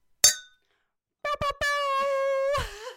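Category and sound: household object, glasses clinking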